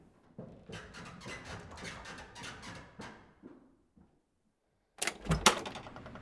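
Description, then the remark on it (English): A front door is opened for a Tesco shopping delivery: a few seconds of shuffling and clattering movement, a brief silence, then a loud latch clunk and rattle as the door swings open. “I must get the door.”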